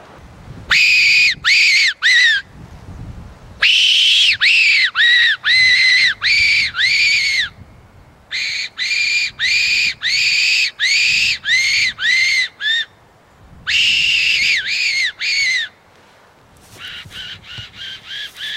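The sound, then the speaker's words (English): A loud animal-calling whistle squeals out in rapid bursts of harsh, wavering cries, pausing briefly between volleys and fading to softer calls at the end. Nobody speaks. “think that one's been whistled as well before.”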